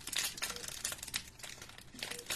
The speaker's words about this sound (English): It's a bit of crackling because I have to just prepare a couple of bandages for you.